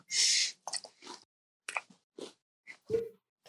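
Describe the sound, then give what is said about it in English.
Crunchy chewing of a cookie: an irregular run of short, crisp bites and munches with brief pauses between them, and nobody talking. “Okay, getting some chewing sounds.”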